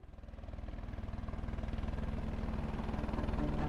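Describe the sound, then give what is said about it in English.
A distant helicopter thrums overhead, its steady rhythmic rotor chop over a low engine rumble slowly growing louder, with no voices. “That's definitely, and I like the distance of the helicopter.”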